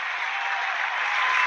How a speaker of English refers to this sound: Let me hit the round of applause like you asked.